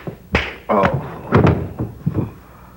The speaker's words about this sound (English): Oh, Sergeant. You have knocked the poor fellow off the baseball bat. Put him back on.